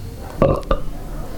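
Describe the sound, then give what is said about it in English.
A loud burp rumbles out in two quick voiced pulses, a deep guttural belch with a short break in the middle, standing alone with no talking around it. “2, was that a belch?”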